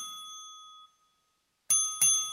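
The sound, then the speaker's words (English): A bright metallic bell hanging in a room of a house rings loudly, its clear tone lingering and fading away, then two sharp strikes ring out again in quick succession with no voices. “Soon it rang out loudly, and so did every bell in the house.”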